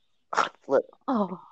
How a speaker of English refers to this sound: Oh, God. What did you just throw up, dog?